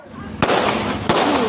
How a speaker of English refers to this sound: At night, this terrifying series of gunshots rang out.